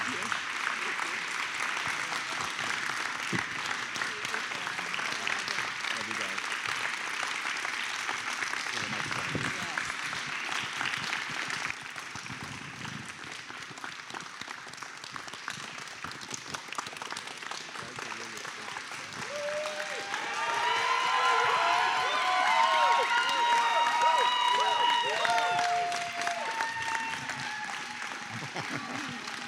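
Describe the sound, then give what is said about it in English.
A crowd applauds steadily to thank and honor helpers, dense clapping for half a minute, with scattered cheers and whoops rising over the clapping near the end. “If y'all could just give them a round of applause and say thank you so much.”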